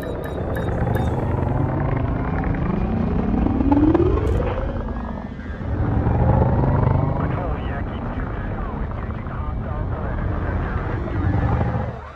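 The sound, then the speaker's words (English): A loud, continuous sci-fi spaceship engine roar in a video game, with a deep rumble, a rising whine that sweeps upward around the middle, then a steady powerful drone that swells and settles again. “Ship released. Engines engaged.”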